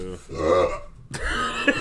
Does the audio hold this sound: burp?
yes